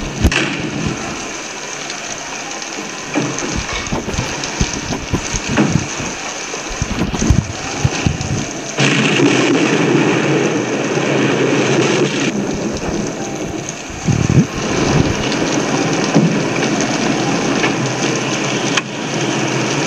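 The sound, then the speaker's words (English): A storm in the film Key Largo roars steadily, with a constant hiss of heavy rain and wind, while deep rumbles of thunder swell and break several times. No one speaks. “A lot of secrets, a lot of mysteries. But the storm provides.”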